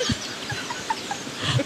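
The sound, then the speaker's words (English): A bird clucks several times in short, soft bursts spaced irregularly, against a quiet background with no talking. “Look at that bird.”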